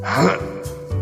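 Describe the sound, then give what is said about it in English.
A voice makes a deep, throaty grunting noise, a sputtering vocal imitation of jacuzzi-like bubbles in the bathwater of a hot bath in a tub, with a breathy gasp at the start. It is moderately loud, with no other sounds. “For those of you who want a more luxurious experience, if you don't have the type of tub that makes bubbles like a jacuzzi, just eat a lot of carbohydrates and make a nice, deep, grunting noise.”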